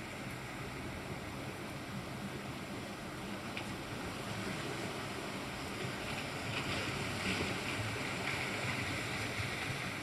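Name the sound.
ocean waves crashing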